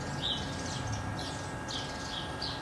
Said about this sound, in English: is still quiet enough to enjoy birds early on a Saturday morning. And I was not so alone at that point. Birds and sounds of nature